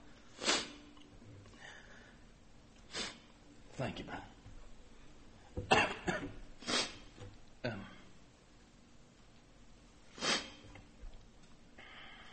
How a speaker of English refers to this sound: My wife fusses at me all the time for sniffing in public.